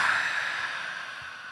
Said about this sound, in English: Sorry. Oh, sorry, I'm yawning.